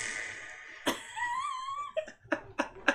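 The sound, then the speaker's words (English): A fart sound effect with cave reverb: a long squeaky, wavering tone, then a quick series of four or five sharp puffs, each trailing off in an echoing tail. No one talks over it. “So, this is what a fart would sound like if you were just in a cave.”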